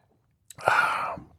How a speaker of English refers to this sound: And I've been talking for a while here, and I haven't drank any of this wine, and I'm going to take a sip.